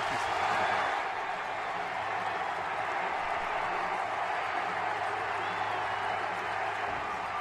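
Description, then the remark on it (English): A huge baseball stadium crowd roars and cheers without letup after Miguel Tejada's ninth-inning game-winning base hit gives the Athletics their 19th straight win, a dense, steady wash of voices with scattered applause blended in, loud from start to finish. “There's a lot of cheering. I left it in here for theater of the mind, setting the stage.”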